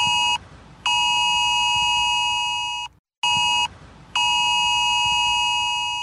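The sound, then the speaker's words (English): A loud, harsh mobile phone emergency alert tone from the UK emergency alert system, being tested for the first time: a short blast, a brief pause, then a long sustained blare, with the pattern repeating twice. No one speaks. “Oh, it's an unpleasant sound, but that is the sound that will come out of every phone near a UK mast this Sunday.”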